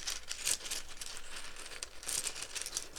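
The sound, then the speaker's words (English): Small rune pieces shuffled around before a rune is drawn, probably in a pouch, making a steady rustle and clatter with a few brighter bursts, continuous for several seconds with no voices. “I just love the sound of shuffling the runes around.”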